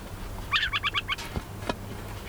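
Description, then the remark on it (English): A tiny brown and white adult owl, no more than 10 inches tall, rises on spindly legs and gives a warning call on spotting people: a quick burst of five or six harsh, chattering notes, followed by a couple of sharp taps over a low background hum. “He rises up on a pair of spindly legs, sounding a warning call.”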